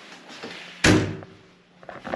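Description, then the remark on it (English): A shower door is pulled open with one sharp clack and a brief ringing decay, followed by faint shuffling and light knocks. “No, we're gonna pull the door open.”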